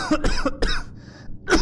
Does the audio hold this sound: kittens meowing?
no